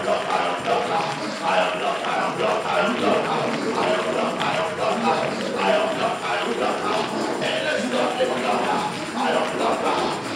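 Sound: audience clapping hands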